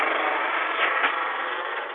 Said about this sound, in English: Man, somebody flying a helicopter or something.